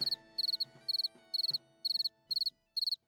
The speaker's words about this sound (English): Wow. Listen to those crickets.